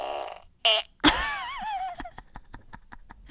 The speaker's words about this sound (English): I do have my fart machine on me, and this is my favorite sound. Wait, no, this is my favorite sound. The little at the end. Wait, let's hear it again.